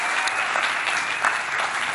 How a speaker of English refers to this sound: Yeah. That's awesome. Have one big round of applause. Thank you so much.